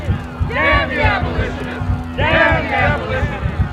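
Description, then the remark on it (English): A mob shouts in two loud surging waves over a steady, pulsing thud of stomping feet and fists pounding walls, with a low hum droning underneath throughout, at a smoke-filled evening Anti-Slavery Society meeting in Association Hall, Albany, New York, February 1861. “There's the pulsing sound of feet stomping, fists pounding walls, and a mob shouting.”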